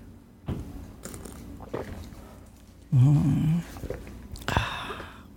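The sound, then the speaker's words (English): Someone drinks a big glass of very cold ice water in a hot room: scattered clinks and small crunchy ticks of ice against a glass, a loud half-second gulp, then a bright rattle of ice as the glass moves. No one speaks. “Here's me drinking this water.”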